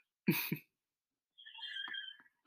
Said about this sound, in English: Yes. Sounds like a donkey screaming. It's actually a deer screaming. I was close.